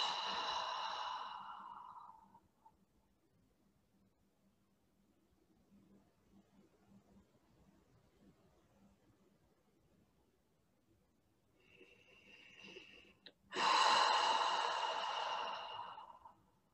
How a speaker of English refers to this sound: Start to relax. Breathing in through your nose and releasing through your mouth.